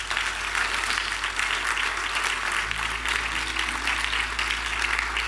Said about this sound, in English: Can we clap it up for that?